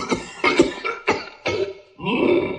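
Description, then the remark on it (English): A run of harsh, hacking coughs, about five sharp bursts in quick succession, loud, ending in a longer, raspy, wheezing cough. This is George Lucas's cough while he had bronchitis, used as General Grievous's cough in Star Wars. “And as far as sound effects go, was it not George Lucas's hacking cough that gave Grievous his cough?”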